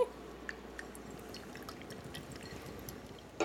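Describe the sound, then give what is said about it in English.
A quiet, steady pour of Hefeweizen beer into a glass, with a fizzy, crackling texture and scattered small drips and splashes, continuous for a few seconds, with no talking. “So rare to have a good pour for me.”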